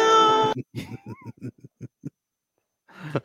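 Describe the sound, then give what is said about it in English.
A person imitates a cat's meowing: one long, bright, whiny tone, then a quick run of short choppy vocal bursts, closing with a brief rougher noise, all clear. “You poke left, you paw right. Meow, meow, meow.”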